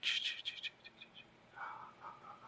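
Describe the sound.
Someone mimics a cuckoo call: a quick burst of high, chirpy trills, then a couple of lower whistled notes. It is faint, with no talking.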